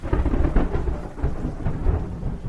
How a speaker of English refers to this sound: It's the evening of April 3rd. As thunderstorms rage outside, Martin Luther King speaks on behalf of the sanitation workers to several thousand followers in downtown Memphis.